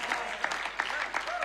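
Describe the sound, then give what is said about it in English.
A crowd claps together in a steady rhythm, dense overlapping hand claps with regular louder beats, fairly loud, for a short stretch, as the back row of an audience claps when asked to. “Come on, nobody in the back row kind of clap.”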